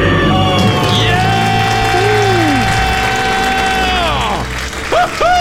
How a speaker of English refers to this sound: That was a decade-long scream right there. I love it.